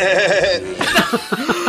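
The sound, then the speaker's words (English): A voice attempts a rapid machine-gun imitation that comes out as a wavering, goat-like bleat: a sustained buzzy tone, then a string of choppy staccato bursts, loud and close. “When … makes the machine gun sound, it sounds more like a goat than a machine gun.”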